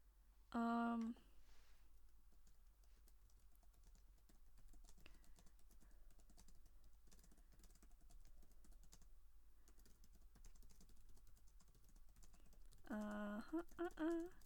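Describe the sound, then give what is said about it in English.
Soft, steady clicking of someone typing on a computer keyboard, quiet and continuous, bracketed by short electronic beeps from the computer at the start and again near the end. “Don't know if you can hear me typing.”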